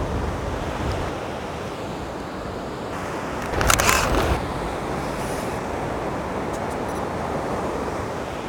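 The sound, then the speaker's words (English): A short burst of camera shutter clicks, a few in quick succession, sounds midway through over steady, loud ocean surf and wind noise. Nobody speaks. “I'm going to get a couple more because I can see the light changing now.”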